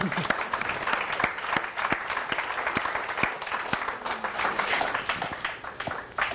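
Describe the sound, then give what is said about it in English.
An audience applauds steadily, dense overlapping claps sustained at an even level throughout, with a few sharper individual claps standing out. “That's worthy of clapping for, I think.”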